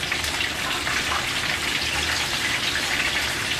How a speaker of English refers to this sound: We're gonna do about 3 pieces at a time because I wanna make sure that they're cooked evenly. Loving it. All right, so while that chicken is frying, I'm gonna go ahead and put my cornbread in the oven.